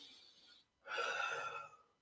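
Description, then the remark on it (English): A soft breath gives way to a long, deep, airy breath lasting nearly a second, taken during a breathing exercise, with no talking around it. “It just tells me your breathing is low, so let's do an exercise where you”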